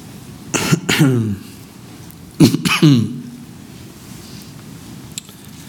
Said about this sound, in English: If I didn't have this microphone on, I'd cough really big right now. I'm trying to choke it down.